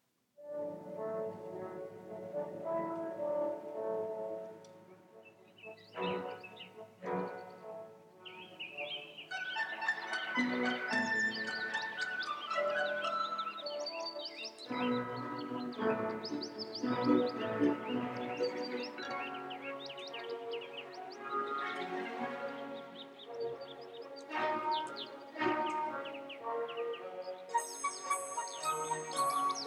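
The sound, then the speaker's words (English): Orchestral interlude from a Puccini opera, depicting the passage of night into morning, with bright, chirping high figures imitating dawn birdsong, flitting over sustained strings and woodwinds; steady and moderately loud, with no voices. “In the interlude, Puccini has written the bird songs of dawn.”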